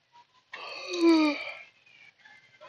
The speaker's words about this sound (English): And then I yawn.